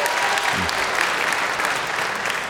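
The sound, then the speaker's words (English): A show audience claps steadily to answer a host's question about how many senators there are, a dense wash of overlapping hand claps at an even, fairly loud level, with a brief low voice murmur partway through. “How many of you think you have between 50 and 100 senators? You have to clap.”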